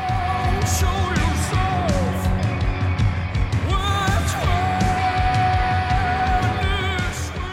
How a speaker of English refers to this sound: The driving, sizzling bass only has a few seconds to set the dark mood before the guitar kicks in. It's somewhere between a surf rock glissando and a metal screech.